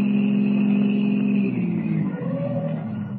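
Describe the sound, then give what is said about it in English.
A car engine rumbles steadily, then its pitch drops as the car turns off the Conway Turnpike onto a well-hidden wagon road, slows and comes to a stop, settling into a lower idle hum. No voices are heard. “the car carrying Duke Renard and his two henchmen, Curly and Spud, turns off the Conway Turnpike and comes to a stop”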